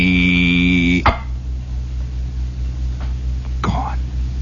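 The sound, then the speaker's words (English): A voice imitates a fly coming down to buzz a small green clawed creature, with a steady, nasal, high-pitched drone lasting about a second, cut off by a sharp pop, followed by low background noise and another brief burst. “And then a fly would come down and start to buzz him.”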